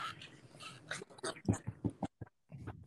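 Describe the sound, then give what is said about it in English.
A dog being petted: soft, repeated rustling strokes of fur with faint snuffling and breathing from the dog, a few brief pauses between the strokes. “Oh, that's just, I'm petting the dog.”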